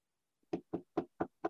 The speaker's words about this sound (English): I don't know if you hear that. Knock on wood. Knocking on, I hear it.